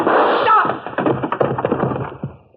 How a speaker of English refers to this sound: I guess he'd forgotten all about you until you landed that chair on his head.